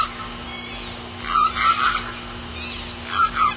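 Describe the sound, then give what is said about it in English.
Orca calls from a mother and young whale: two bursts of high, squealing whistles and bleats trade back and forth over a steady underwater hiss and low hum. “Then it descends into a kind of a maelstrom of sound.”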